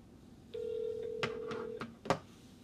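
signal or alarm, telephone call ringing out

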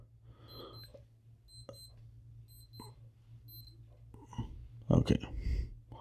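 signal or alarm, wristwatch alarm beeping

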